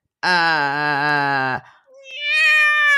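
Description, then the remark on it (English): A 29-year-old pet cat named Cuckoo meows loudly, one long steady drawn-out meow followed after a short pause by a second, higher-pitched meow that rises and wavers. “Yo, my cat, Cooper.”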